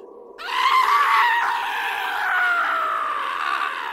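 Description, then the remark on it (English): Villagers scream loudly and continuously, their high, strained voices overlapping for several seconds after a brief quieter start, with no speech. “But most of them screamed.”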